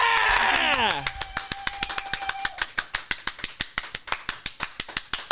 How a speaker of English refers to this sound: That's your biggest round of applause.